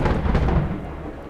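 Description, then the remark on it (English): A deep, loud rumble of thunder rolls through a storm on a stormy night in Texas, heavy in the low end and slowly easing off toward the end. No voices are heard. “So on a stormy Texas night, Betty waited for her husband to fall asleep.”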